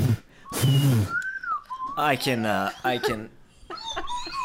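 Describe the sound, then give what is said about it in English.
A breathy, airy blow gives way to a thin, wavering whistle tone, a voice imitating someone struggling to whistle, followed by laughing and animated vocal sounds. “He tucked his book under his arm and he walked away, trying to whistle.”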